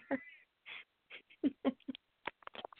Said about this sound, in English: That damn duck.